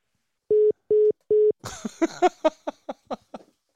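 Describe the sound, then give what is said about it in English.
Phone line bleed from a caller's phone during the Bryan Hank Show: three short, evenly spaced electronic beeps, then a burst of muffled, garbled voice-like audio leaking through the line and fading out over a couple of seconds. “Cut your phone off, because I've got bleed back here.”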